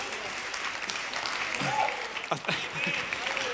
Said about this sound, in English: The tent is getting applause.